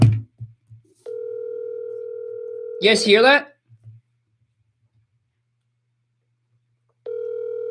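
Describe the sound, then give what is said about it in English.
Ringback of an outgoing phone call: a steady, mid-pitched electronic ring holds for about two seconds and is cut off by a short spoken remark. After a long silence, the ring starts again. “Let me call somebody.”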